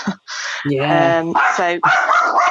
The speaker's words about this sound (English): There's my dog again. There she is again. Someone coming to the door.